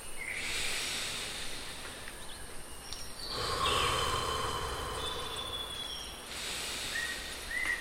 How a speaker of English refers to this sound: So come, breathe. Steady. Please.